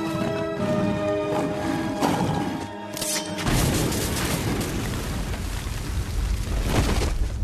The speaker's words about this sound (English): Ooh. That actually didn't look fake. No. Normally when you see that sort of shot, it's CGI explosion and the actors jumping for all the work.